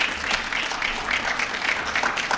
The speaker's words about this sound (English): And congratulations to those we are honoring, the outstanding women and men in the city of Buffalo who exemplify Dr. King's vision of unity and service. Let's give all of our honorees a great big round of applause.